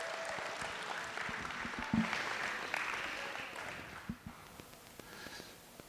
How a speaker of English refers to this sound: Thank you so much. Give them a hand. They did a good job.